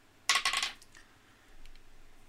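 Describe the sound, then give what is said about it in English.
A twenty-sided die is rolled for a dexterity saving throw in a tabletop role-playing game, clattering across a table in a quick burst of bright, rattling clicks and settling on 19 with a couple of faint ticks. No one speaks. “Okay, what's a dex saving throw? Is that another d20?”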